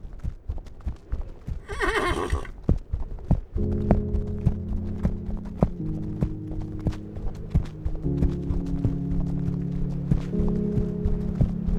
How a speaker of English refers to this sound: The snow was falling slow, in enormous flakes, when Aveline mounted her loyal steed, Stella. Beneath the black horse's hooves, the frozen ground crunched and thundered.